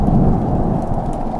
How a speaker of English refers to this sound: The first raindrop hit me in the forehead, then another. As I floated up, the rain was colder, harder, more lightning.